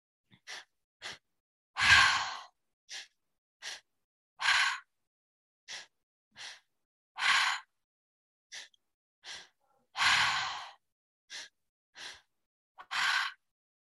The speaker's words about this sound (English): Okay, so again, three-part breath, breathing in through the belly, up into the chest, and releasing it out through the mouth. You can go at your own pace. You can go super duper slow.